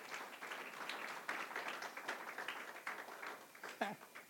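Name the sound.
audience applause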